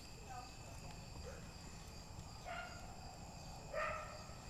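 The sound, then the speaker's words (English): A few faint dog barks come in short bursts, one near the middle and a louder one toward the end, over a steady background of chirping crickets. “Hear the dogs starting to bark.”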